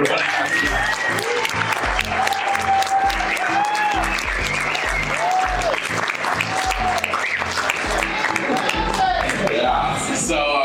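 An audience bursts into loud, sustained applause lasting about ten seconds, dense and steady throughout, with scattered whoops and shouted cheers rising above the clapping.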